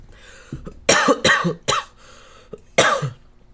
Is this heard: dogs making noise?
no